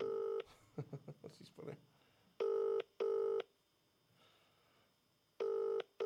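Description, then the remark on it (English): Phone dialing tones play over a speakerphone as the speaker places a call to a woman, in steady, buzzy paired bursts separated by pauses, with a brief stretch of muffled voice between the first tones. “Right, I'm just going to phone her. Right, okay. See what happens. Put on speakerphone.”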